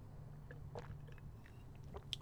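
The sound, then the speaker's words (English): Faint, wet mouth sounds of someone taking small sips of water, a few soft slurps and a swallow over a low steady hum, ending in a sharper click. “excuse me, a little bit of water.”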